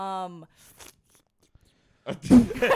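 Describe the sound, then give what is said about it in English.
A short vocal tone, a pause of near silence, then a burst of wet, smacking mouth noises, someone imitating loud, slurpy eating. “Why did you make the noises of like you were just eating your version of the Big Gang Bang?”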